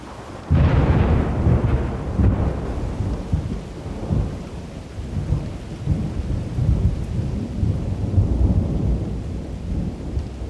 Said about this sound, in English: And in seemingly no time, the skies that were filled with sunshine, that were warming our bodies and the earth just a few hours before, turned to thunder and rain and lightning strikes and fires.